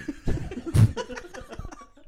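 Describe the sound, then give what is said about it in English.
A single sharp cough bursts out close to the microphone, surrounded by softer breathy chuckling and murmuring sounds. “Edit the cough out.”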